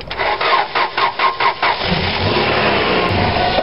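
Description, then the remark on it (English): A car engine cranks over and fails to catch: a loud run of rhythmic, chugging starter pulses gives way to a steadier grinding whir, with no voices. “Is it going to start? I don't know. Let's try it again.”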